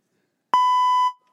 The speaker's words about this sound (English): We had such a good memory taping two grown men driving on the Tomorrowland Speedway as one yells obscenities at Tron because it wasn't open. Where's that beep button?